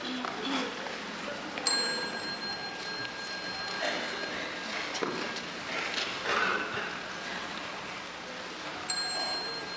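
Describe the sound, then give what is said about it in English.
A small high-pitched bell is struck twice, once near the start and again near the end, each ring shimmering briefly over a quiet, hissy background. The bell signals children at practice to stand up and salute. “When the children hear the small bell, they stand up and salute and continue the practice outside.”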